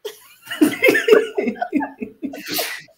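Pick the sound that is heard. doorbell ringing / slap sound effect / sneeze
sneeze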